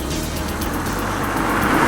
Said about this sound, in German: Sekunden darauf fuhr der gesuchte Geländewagen an ihm vorbei.